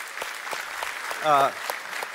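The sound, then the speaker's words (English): A church audience at Calvary applauds steadily for people who began attending after the COVID pandemic, a dense patter of hand claps, and a single voice briefly whoops partway through over the clapping. “But yeah, we can even clap for that.”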